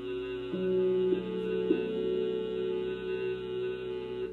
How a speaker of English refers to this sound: And then we exhale with a humming sound with the mouth closed. It looks like this. 15-second hold and the hum.